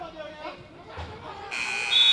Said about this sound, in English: Horn sounds. 45 minutes in.